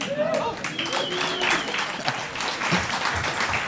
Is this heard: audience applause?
yes